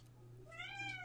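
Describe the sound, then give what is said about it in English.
A single drawn-out meow with a rising, whiny pitch, voiced by a person imitating a cat, over a steady low hum. “You're making cat sounds.”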